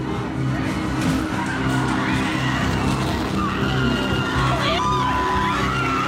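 Car tires skid and squeal in high, wavering whines over a steady, loud engine rumble that continues without pause for about six seconds, as a man drives his vehicle into a crowd.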